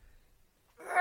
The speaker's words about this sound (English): Bless you. Sorry.